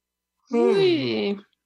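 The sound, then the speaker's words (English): A single drawn-out voiced yawn, rising then sliding down in pitch with a breathy edge over about a second, with nothing else around it. “I'm still yawning, even though you're the pod pocker.”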